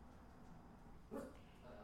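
A running dog lets out one short, faint bark partway through, set against a steady background hum, with no other clear sounds before or after.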